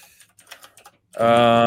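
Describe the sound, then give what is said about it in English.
A quick run of soft, irregular computer keyboard clicks taps away for about a second, then a person's voice abruptly starts speaking loudly over the end. “Sorry for the typing.”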